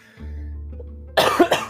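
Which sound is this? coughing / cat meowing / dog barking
coughing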